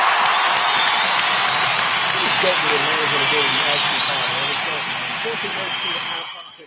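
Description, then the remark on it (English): A loud, sustained round of applause with a crowd cheering and whooping, steady for several seconds before fading out quickly at the end. “Let's go ahead and get a round of applause to all of us out here that's doing big things in the podcast world, man, because today is International Podcast Day.”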